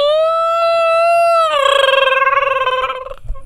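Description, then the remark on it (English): A Bigfoot howl sound effect: a loud, sustained tonal cry that holds a steady pitch, then drops slightly into a rapid wavering tremble before cutting off. No one speaks. “Apparently, Bigfoot would howl for him.”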